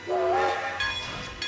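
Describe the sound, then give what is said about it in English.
A steam train lets out a brief whistle, then a loud burst of hissing steam follows with bright, sustained tones, without any voices. “This is the Polar Express. I took his outstretched hand, and he pulled me aboard.”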